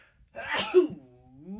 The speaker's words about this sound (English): There might be a sneeze coming up.